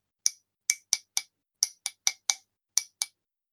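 A wooden paintbrush taps a ceramic Raccoon mug ten times in uneven little bursts, each a bright, sharp clink with a brief ringing tone. No voices are heard.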